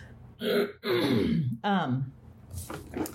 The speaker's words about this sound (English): anyway, sorry, I got to clear my throat. This is just very raw.